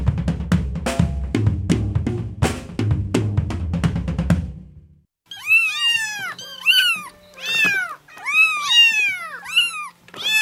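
A cat with a cancerous growth in its vocal folds meows repeatedly, a quick run of five or six loud, drawn-out rising-and-falling cries, following a few seconds of low, rumbling noise.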